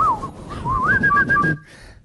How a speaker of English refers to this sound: We're so tired. We're just whistling to microphones.